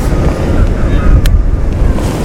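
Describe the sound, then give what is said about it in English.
Strong, cold wind roars steadily across the microphone outdoors up high, a constant low rumbling buffet with gusty fluctuations and one brief sharp crackle partway through; no one speaks. “It's pretty dangerous up here actually. It's very windy and cold”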